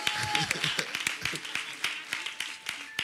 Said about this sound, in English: Wow, my Dutch is growing. Oh, clap for me.